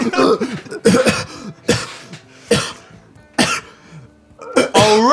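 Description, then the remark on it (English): Harsh coughing fits after a hit from a bong: a series of about six loud, raspy hacks spaced irregularly over several seconds, with strained breathing and rough throaty sounds between them. “… begins coughing on his bong.”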